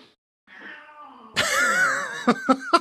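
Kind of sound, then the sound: animal, cat meowing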